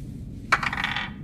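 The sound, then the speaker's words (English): Real dice are rolled and clatter onto a hard tabletop with a sharp first strike, then a brief run of bright rattling clicks that settle within about half a second. “I will roll real dice.”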